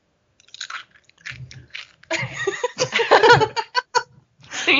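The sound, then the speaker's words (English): Crunchy chewing of breakfast cereal, a quick run of loud, brittle crunches in an irregular rhythm, with a bit of soft giggling mixed in. “I'm just trying to, like, push my cereal out of reach so I don't, like, eat it on air and make crunchy noises because that would be bad, but I really want to eat it.”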